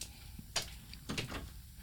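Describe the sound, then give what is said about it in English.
A door is pushed shut, a soft knock followed a moment later by a rattling thud and click as it settles closed, low in level. “Like, close that door, man.”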